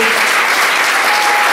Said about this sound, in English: Come on, you've got a big hand clap right now because this is what God wants to do with you.